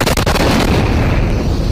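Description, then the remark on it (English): A bomb detonates inside an RV at an AT&T building: a single loud, booming explosion bursts out, with a sharp crackling onset that gives way to a heavy, rumbling roar sustained through the rest of the moment, with no voices. “And just moments later, the bomb detonating.”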